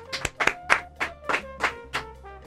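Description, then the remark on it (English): A short burst of audience applause welcoming a guest DJ: about eight sharp, evenly spaced claps at a moderate level, with a steady low hum underneath and no voices. “DJ … is here. Round of applause.”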